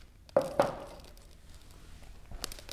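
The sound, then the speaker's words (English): Burning dry bay leaves crackle with two sharp, loud pops in quick succession, then a stretch of faint ticking and another brief burst of crackles at the end, with no voices. “Oh, listen to them. I know, crackle, crackle.”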